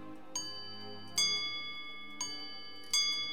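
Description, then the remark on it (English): A carriage clock ticking, four sharp metallic ticks spaced unevenly, each leaving a faint bright ring hanging in the air, with no voices over it. “stops the flywheel on the carriage clock at 12 minutes past 7.”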